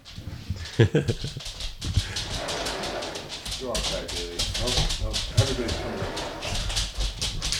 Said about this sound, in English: So I have a laminate floor as dogs walk in, and you can hear their nails hitting.